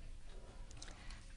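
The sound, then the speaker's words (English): Faint scratchy strokes of a pencil sketching on a piece of paper, a few short quick scrapes over a soft background hiss, with no voices. “I'm sitting here sketching on a piece of paper because I'm having trouble picking one thing as well.”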